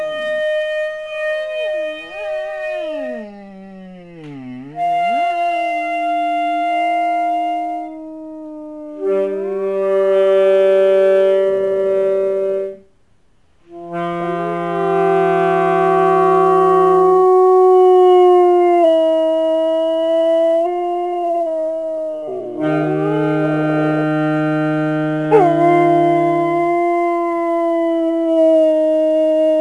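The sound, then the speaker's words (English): A lab mix dog at home howls in long, wavering, sliding tones while a horn plays warm-up scales in sustained notes stepping up and down, the two sounds overlapping loudly. “Part is when he tries to match my scales with howling.”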